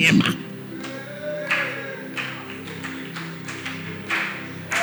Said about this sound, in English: I know you clap for me, but I'm just preaching the word.